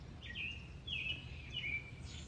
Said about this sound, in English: I'm so distracted. There's a bird. There's a bird out here in my backyard.